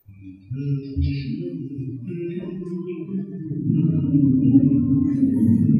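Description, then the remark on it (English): Several voices hum the hymn Amazing Grace slowly together in low pitch, starting softly and swelling louder as more voices join in. “Start joining in the humming.”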